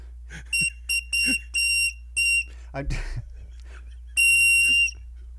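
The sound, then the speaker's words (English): A water bird whistle blown dry, its water long evaporated, gives a string of short, shrill, train-like toots, a breathy rustle, then one longer steady blast at the end, loud. “I was attempting to use the cool bird whistle that Brian got me, but it requires water inside”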